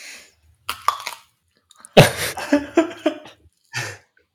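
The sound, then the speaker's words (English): Wet chewing and squelching mouth sounds as someone chews a bite of unpeeled banana, skin included, in irregular bursts, with a sharp cough-like gag partway through and short breathy sputters between bites. “I'd rather chewed into this banana”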